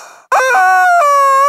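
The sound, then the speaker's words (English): A rubber chicken toy named Edwina, used as a lightning round notification, lets out one long, loud, nasal squawk. It is a reedy high-pitched wail lasting over a second that wavers and shifts pitch slightly partway through. “She's the rubber chicken.”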